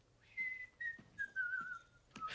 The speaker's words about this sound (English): So composed. He's whistling. Yeah. Everything's fine. He's wearing a Santa suit.